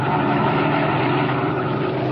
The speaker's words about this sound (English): As our story continues today, we find him and his henchman Spike in their black sedan, slowing down along the road and searching for a likely place for what Doneli has in mind.